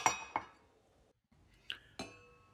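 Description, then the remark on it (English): Small glasses of tonic water are set down as they are served, with four bright clinks, two close together at the start, then a pause before two more, each leaving a brief ringing tone. “Don Fanucci then served each of his three regulars a small glass of tonic water.”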